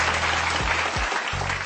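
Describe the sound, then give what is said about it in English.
A crowd applauds steadily in response to news that the Grammys are considering adding an Afrobeats category, a dense wash of many hands clapping at an even loudness throughout, with a low hum underneath that briefly drops out partway. “Can we get a round of applause for that, if possible?”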